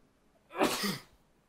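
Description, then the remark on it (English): A single sneeze bursts out, a quick sharp blast of breath lasting about half a second, with quiet room tone before and after. “Bless you.”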